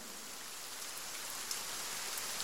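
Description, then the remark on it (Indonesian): Steady rain falls, a dense hiss spread across the high range with scattered drops pattering on a surface, fairly quiet and unbroken throughout, with no voices. “Hujan sialan ini turun lagi.”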